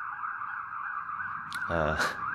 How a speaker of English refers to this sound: we'll just let this ambulance drive by. The other thing that, it's still driving by.